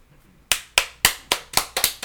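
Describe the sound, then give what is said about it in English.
A slow clap: after a brief quiet moment, seven or eight sharp, crisp hand claps land one after another in a steady rhythm, picking up slightly toward the end. No one speaks. “A slow clap erupted.”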